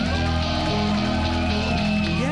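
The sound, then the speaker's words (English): A steady, dense wash of applause at even loudness for a couple of seconds, with sustained tones running underneath and no voices. “give a warm round of applause to my friend and yours”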